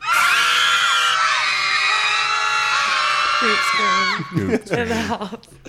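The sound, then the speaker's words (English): Several voices scream together in a loud, sustained, high-pitched chorus for about four seconds, then break off into scattered shouts and yelps that fade out. “I'm just saying, those were some good screams.”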